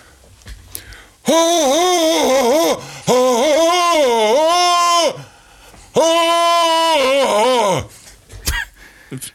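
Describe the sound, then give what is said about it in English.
A man performs a Tarzan yell: three loud, sustained vocal bursts with a warbling, yodel-like pitch that rises and breaks, separated by brief pauses. No other talking. “can you please do your famous Tarzan yell?”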